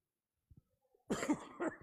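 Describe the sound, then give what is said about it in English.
A couple of soft throaty catches, then a loud cough in two harsh bursts, rough and breathy, with no talking around it. “I don't cough for days, and then I get up here, stinking devil.”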